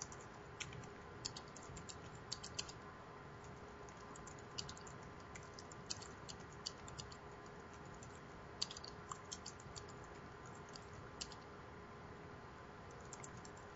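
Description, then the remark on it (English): Steady, irregular typing on a wireless computer keyboard with a split space bar, typing in Notepad: a quick patter of soft key clicks over a faint electrical hum, with no voices. “I just said something really silly, like, this is a wireless keyboard and I'm typing in Notepad, but at least you get the sound of the keyboard.”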